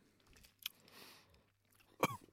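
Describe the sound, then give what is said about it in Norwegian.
Chewing of a sour, chalky candy: a few dry crunches and grinding bites, with a louder crunch near the end. No one talks. “Det som spiser det første bildet for, det sur kritt. Det tygger jeg.”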